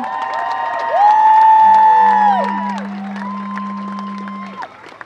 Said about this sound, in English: Can I get another round of applause, please,